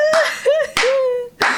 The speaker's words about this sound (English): I'm clapping for this gentleman. I don't know if you can hear.